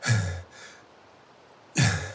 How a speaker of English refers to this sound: Jonas collapsed back into the snow, panting and watching the steam rise